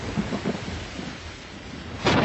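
A steady hiss of heavy rain with low, rolling rumbles of thunder underneath, then a sudden louder crack of thunder near the end. No one speaks.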